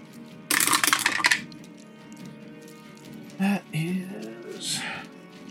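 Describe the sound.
Dice are taken out and rolled for a cure wounds spell: a quick clattering rattle of dice tumbling onto a hard surface, a bright burst lasting about a second, followed by quieter background noise and a brief voice murmuring.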